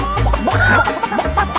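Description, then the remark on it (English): Several chickens cluck and squawk in a busy, overlapping burst, fairly loud, with short choppy calls and a low steady hum underneath. “Now how about some chickens?”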